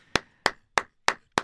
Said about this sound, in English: 50. How long was that? About 20 seconds. Oh, well, look. Listen, look at you. That had to be an audible clap.